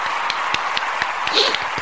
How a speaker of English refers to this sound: Yeah, we're going to give him a round of applause. Woo.